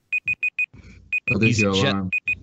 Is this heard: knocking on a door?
no